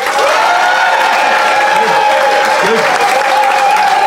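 A steady, dense wash of applause from the Phoenix audience, clapping as a public vote, many hands clapping at once without pause for the whole stretch, with a few voices calling out faintly underneath.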